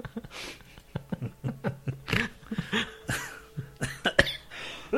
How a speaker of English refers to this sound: Have you noticed my cough has been less? It's still shitty. It's still there, but